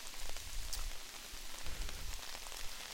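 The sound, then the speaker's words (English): Heavy rain pattering steadily on an umbrella overhead, a dense, continuous hiss of countless drop impacts with a low rumble underneath and no voices. “What do you think of the rain, sweet dumps? It really is coming down. I do have an umbrella.”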